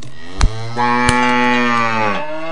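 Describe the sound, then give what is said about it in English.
A cow lets out a long, loud, drawn-out moo as someone tries to shoo it along, its low voice holding steady for about two seconds, with a couple of sharp knocks near the start. “Get, cow. Go on now, get.”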